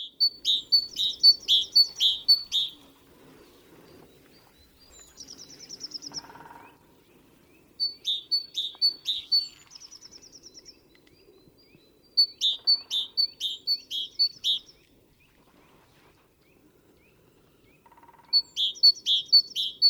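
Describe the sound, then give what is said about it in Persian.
A common chaffinch sings repeated bright, rattling phrases, each a quick run of descending notes ending in a flourish, recurring every few seconds against a quiet outdoor background. “یا یه سری پرندهایی که بیشتر میبینمشون رو سعی میکنم صداشون رو توی ذهنم نگه دارم، مثل چرخی سک‌ها که احتمال دیدنشون توی پارک‌ها زیاده. دعوت میکنم صداشو با هم دیگه بشنویم.”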